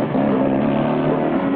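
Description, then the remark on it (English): A motorbike and a police car speed through town in a chase, the police car pursuing the bike, their engines roaring loudly and steadily with a strong low droning hum and no voices. “He goes faster, and so do the police. Linda hangs on as they speed through town with the cops chasing.”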